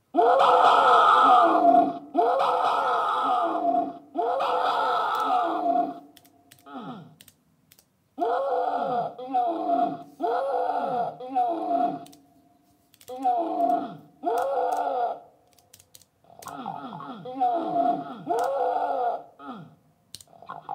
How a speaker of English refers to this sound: So the OMX27 here is a sequencer, besides being a keyboard. So if I move it into sequencer mode and pick a sequence, let's see, do I have any that I set up? Let's try this.